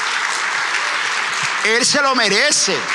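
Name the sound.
audience applauding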